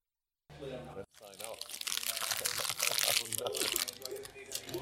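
A crisp packet is crinkled and crushed continuously for about four seconds to simulate interference, a dense, loud, crackling rustle that swells toward the end, like static.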